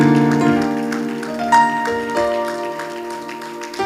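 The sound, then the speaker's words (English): An audience claps steadily as worship to the Lord beneath sustained keyboard or organ chords, the applause a soft, continuous patter woven through the music, with a few sharper accents along the way. “Why don't we give another hand clap to the Lord and offer him some worship?”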